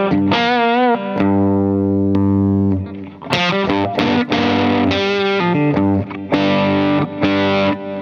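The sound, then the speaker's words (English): Electric guitar through a clean boost pedal hitting the front end of the amp harder, master volume low, played loud with a slightly gritty, driven tone: a long ringing chord, then a run of punchy chords and sustained notes, with no voices. “This has a clean boost in it, which sort of takes the place of the EP and just hits the front end of the amp a little harder.”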